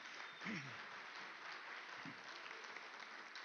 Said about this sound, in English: One more round of applause for them, please.